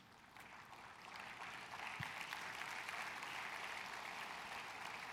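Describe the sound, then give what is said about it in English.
An audience applauds the grandparents and great-grandparents present, a dense wash of many hands clapping that swells slightly and holds at an even, moderately loud level throughout, with no speech over it. “And so for every grandparent, great-grandparent in the house today, we applaud you.”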